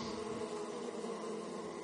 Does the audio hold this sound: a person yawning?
no